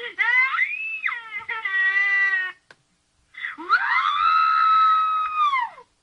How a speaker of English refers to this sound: Now, I went to the website because I wanted to hear some of these screams that have been recorded on there. They got some good ones, too. Listen to this one.